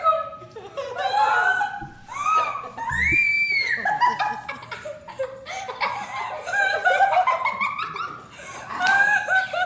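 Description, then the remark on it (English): A little girl screams and squeals with excitement at getting a golden retriever for Christmas, high-pitched, in a near-continuous run of shrieks broken by breathless laughter, with other voices faintly mixed in. “No, that's a little girl getting a golden retriever for Christmas.”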